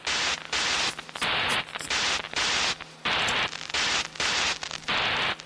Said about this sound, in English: Using static as the beginning. Okay, that's pretty cool actually.